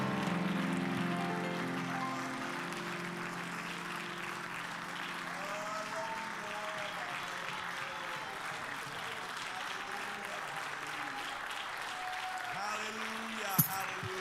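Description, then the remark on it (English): A church audience applauds in praise of the Lord, a dense, continuous patter of many hands clapping, with voices calling out and singing underneath, and a sharp single bang near the end. “Give the Lord a great hand clap of praise and lift your voice and worship him.”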